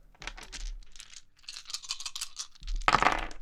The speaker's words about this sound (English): if you'd like to help us out here by rolling six 12-sided dice.